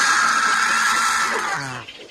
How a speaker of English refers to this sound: That sounds like a tortured goose. Dying one. Yeah. That's a turkey vulture right there.